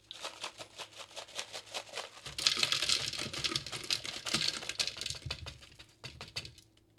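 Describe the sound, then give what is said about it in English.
Ice cubes clatter into a blender jar as the first step of a simple drink recipe, in quick, irregular clicks, swelling into a dense, rattling tumble partway through before thinning out to scattered knocks. No one speaks. “Got our ice in there, all right?”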